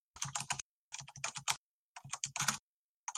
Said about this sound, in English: Oh, I can hear you typing, so I'll keep going.